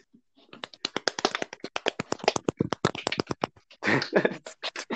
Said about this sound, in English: So, about the NHS, I want everyone clapping right here.